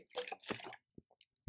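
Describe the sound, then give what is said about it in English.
Someone takes a quick sip of water: a short burst of wet slurping, a faint swallow, then a soft low thump at the end. “Sorry, I'm just going to take a sip of water here.”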